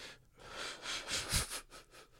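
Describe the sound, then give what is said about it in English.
Breathy drawing-in of air as a person takes a drag on a cigarette, followed by a muffled, stifled cough and a few ragged exhales as they try to laugh, fairly quiet with no talking. “Sorry, I took a hit off my cigarette and tried to laugh.”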